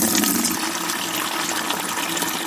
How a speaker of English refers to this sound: They filled up the pots with water from the well.